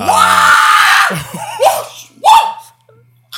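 A man lets out a loud, sustained scream right up close, lasting about a second, followed by a couple of shorter whooping yells that trail off into quiet.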